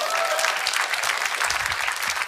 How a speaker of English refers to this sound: Come on, give the Lord another clap of praise.